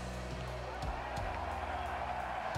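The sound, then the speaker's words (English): A golf crowd at the 16th hole roars after a shot by Jordan, a three-time major champion, in a steady, dense wash of cheering that holds at an even loudness from start to finish, with a few low tonal voices rising through the noise. “Listen to the crowd. They say it all.”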